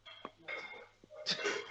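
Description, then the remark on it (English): Dishes being washed in the background: a few sharp clinks and clatters of crockery over a steady watery hiss, with a louder burst of clattering near the end and no voices. “Wait, why would you somebody think doing dishes in the background?”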